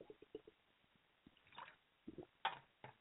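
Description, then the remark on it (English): Someone takes a drink of water: quiet sips and a few wet gulping swallows in an irregular sequence, with no talking. “Hold on, taking a drink.”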